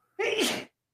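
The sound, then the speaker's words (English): A single sharp sneeze bursts out, loud and brief, with a breathy, forceful rush that cuts off quickly into silence. “Bless you.”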